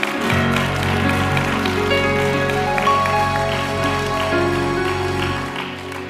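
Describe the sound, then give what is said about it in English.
An audience claps as a clap offering to the Lord, a steady, dense wash of applause blended with sustained music that holds throughout. The clapping stays fairly loud and even for several seconds before easing slightly at the end. “Give a Lord a clap offer this morning.”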